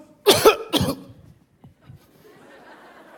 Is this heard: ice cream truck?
no